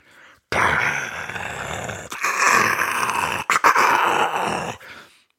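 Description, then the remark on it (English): A man with a microphone cupped over his mouth and its low-frequency boost turned fully up imitates a thunderstorm for a stage scene, with a loud, rough, growling roar sustained for about four and a half seconds, broken by a couple of brief gaps and surges, with no words spoken. “It just sounded like some guy making sound effects with his mouth trying to mimic thunder.”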